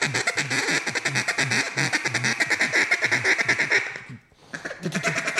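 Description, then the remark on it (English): A duck call blown in a fast, rolling feed chuckle: rapid, steady clucking pulses, a brief pause near the end, then the chatter picks up again. “Too many people in a feed chuckle, they muster down and they force it.”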